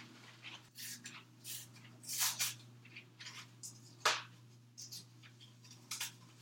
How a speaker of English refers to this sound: It's not quite boiling yet, but while we're waiting, we can open up the box.